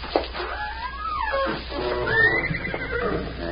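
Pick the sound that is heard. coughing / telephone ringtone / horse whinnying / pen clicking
horse whinnying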